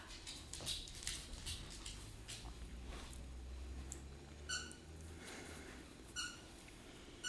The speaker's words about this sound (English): If you hear squeaking, it's Ash playing with one of his toys.